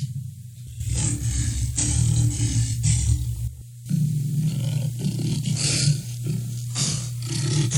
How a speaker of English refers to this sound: Well, that'll get your attention, no doubt. That's a male lion that you're listening to. It weighs between 330 and 550 pounds. The females weigh between 265 and 400 pounds. They live in grassland and savannas in Africa